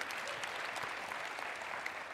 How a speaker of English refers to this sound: Now, yeah, let's clap for that. That we're gonna have that happen.